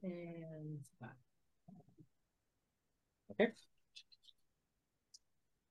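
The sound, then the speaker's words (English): Five six-sided dice rattle and clatter in a dice box, rolled for sneak attack damage in a tabletop game: a sharp burst of clicks followed by a few lighter scattered taps, after a brief murmur of voice at the start. “Roll a dice box.”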